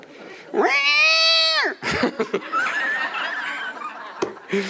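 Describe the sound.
A voice imitates a cat with one loud, drawn-out meow that rises and falls, followed by scattered laughter and murmuring from a crowd.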